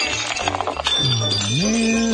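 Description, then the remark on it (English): A glass shattering sound effect: a bright crash with scattered tinkling fragments for under a second, then a sustained rising tonal whine takes over. Loud, with no talking. “Oh, yeah, tiptoe around all that glass.”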